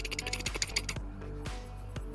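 A rapid patter of soft keyboard clicks fades into a few sharper, evenly spaced taps, all fairly quiet over a steady low background hum, with no one speaking.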